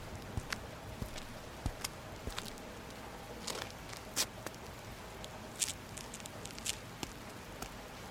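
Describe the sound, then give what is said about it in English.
Footsteps of a person carrying a satchel walk up a block on wet pavement in the rain, irregular soft taps and splashes over a steady hiss of rainfall, fairly quiet, with no voices. “I turned my collar up against the rain and carried my satchel up the block to the Wayfarers Insurance Building, entering from a side door.”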